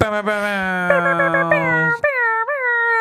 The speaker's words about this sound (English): Loud air horns for a tiny little studio.